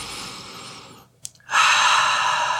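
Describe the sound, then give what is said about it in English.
Airy breathing through the nose while sniffing White Angelica essential oil from a bottle, a brief pause with a couple of faint clicks, then a long, strong sniff that carries to the end. No one speaks. “A little sniff.”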